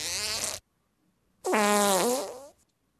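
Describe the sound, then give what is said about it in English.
Two loud, buzzy fart sound effects played from an iPad, a short blast followed after a pause by a longer one that wobbles in pitch, played back clearly with no talking. “Farts and stuff? I got it.”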